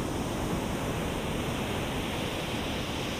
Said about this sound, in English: And you can feel the energy of the ocean as each wave washes up against the shore. The sound of the waves is so soothing, and you begin to feel more and more relaxed with each passing moment.